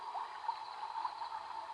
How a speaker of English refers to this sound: There is a clear stream of running water behind you. You just mold and turn around to hear the gushing water.